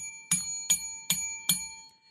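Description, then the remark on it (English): A small bell rings four times in an even rhythm, each strike bright and clear with a short ringing tail, moderately loud with no talking. “My bell has been restored. My bell is back.”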